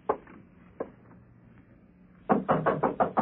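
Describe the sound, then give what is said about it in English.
Two isolated knocks, then a quick run of about six firm raps on a door, fairly loud, with no talking. “Door's open. Come on in.”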